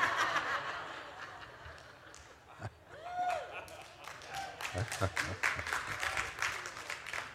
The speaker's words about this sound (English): All the ladies are clapping.